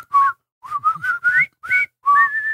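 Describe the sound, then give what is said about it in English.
Several people whistle a tune together in unison, a string of short melodic phrases with brief gaps between them, clear, with no talking. “But the group gets, I guess, re-bored, and they're all whistling.”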